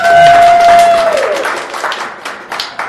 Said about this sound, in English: There was some cheering in spite of our remonstrance.